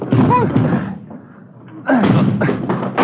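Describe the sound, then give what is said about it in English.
Two heavy, booming impacts as a front door blocked by something piled against it is rammed with shoulders, separated by a short pause, each rattling and thudding loudly, with strained grunting voices mixed in. “Come on, …, the front door. Yeah, come on. Hit it.”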